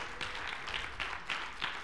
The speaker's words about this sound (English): Round of applause for our inside team.